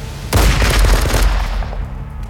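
A loud burst of fire from a Browning machine gun, swung into the air and spraying bullets over a field, erupts suddenly as a rapid stream of sharp cracks over a heavy low rumble, sustained for over a second before tapering into a fading echo.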